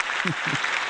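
A steady wash of clapping in congratulation fills the whole moment, with two short vocal bursts rising briefly over the applause.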